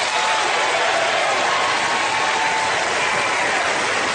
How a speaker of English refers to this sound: So it's funny because you hear in that clip, it sounds like the audience applauding cuts in a little too quick. So it's like it sounds like the audio has been manipulated. I don't know if that's true. Maybe it's just the way they cut it.